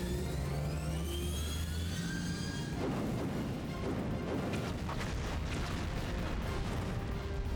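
A steady, rising engine-like whine gives way to a rumbling barrage of explosions against an asteroid, with repeated booms and crackling blasts piling up loudly and continuously until the end.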